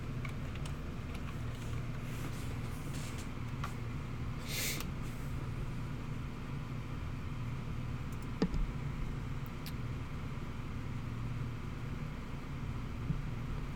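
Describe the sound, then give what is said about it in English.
A handful of scattered computer clicks and light key taps, quiet, as someone pulls up an article on a computer, over a steady low droning hum. No one speaks. “You might hear my computer clicking and all that.”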